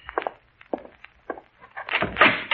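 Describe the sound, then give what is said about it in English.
A few soft, spaced footsteps lead to the door of a wife's room being worked, with a rattling, scraping burst of noise at the end. No one speaks. “That's the door to your wife's room right there, huh?”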